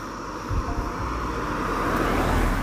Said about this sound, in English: So now, I'm waiting for this car to go by.